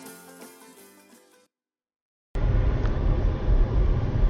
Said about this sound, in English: Apologies for the car engine in the background. It all adds to the ambiance. We were interviewing on the fly.